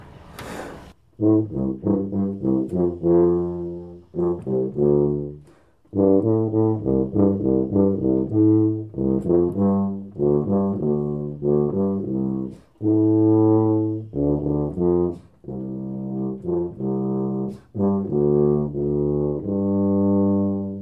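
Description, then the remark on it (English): A brass band plays a rhythmic, chordal piece whose parts represent areas of a city, this section depicting 7 o'clock in the morning as the city wakes, in short repeated phrases separated by brief pauses, full and steady in volume, with a quick noisy burst right at the start and no voices. “lots of other parts playing at the same time, representing other areas of the city, and by putting them together you get a complete brass band piece.”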